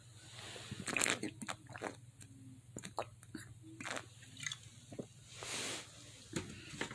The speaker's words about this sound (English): Hold on, let me take a sip of my wine.